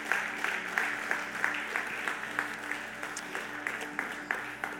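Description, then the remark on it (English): A church audience applauding together in the morning, a steady wash of many clapping hands at moderate volume, sustained for several seconds with no speech over it. “Come on, give him a clap this morning.”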